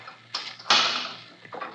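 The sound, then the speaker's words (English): A key is carefully worked in an intricate lock to unlock the door of a crypt on the second floor, above an office: a light metallic click, then a louder clack as the bolt gives, followed by one more softer rattle. No voices are heard. “This is an intricate lock, Waldemar. It takes careful handling of the key.”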